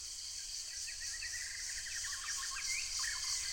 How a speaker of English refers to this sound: They stood for a moment, and Lihila noticed the morning bird song.